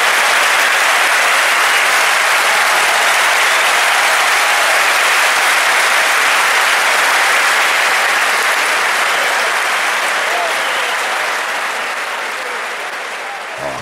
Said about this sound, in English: Can we, dude, you gotta add, can you add an applause to that? Just make it radio magic that. Right here.